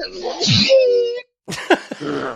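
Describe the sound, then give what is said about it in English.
A donkey sneezes: a loud, strained, wavering honk, a brief pause, then a few sharp snorting bursts and a rough, breathy tail. “That's the donkey sneezing.”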